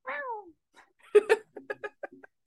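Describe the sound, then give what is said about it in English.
A person mimics a cat with one drawn-out, falling meow, then a quick run of short, choppy vocal bursts, moderately loud, with no other talk. “Like, yeah, like you guys said, you know, like meowing.”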